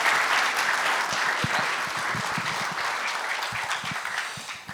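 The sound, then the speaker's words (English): Steady applause from a church audience, a dense wash of many hands clapping at an even level for several seconds, with scattered sharper claps poking through. “A round of applause.”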